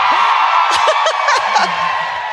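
A crowd at a live comedy festival show cheers loudly and steadily, a dense wash of noise with high whoops and yells bursting out over it, plus a few scattered laughs and voices underneath.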